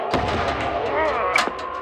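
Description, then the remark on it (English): Gunfire from an army heading toward the listener: two sharp, booming shots about a second apart, ringing over a dense, steady background din of battle noise. “Don't be alarmed by the gunfire. That's the army headed in your way.”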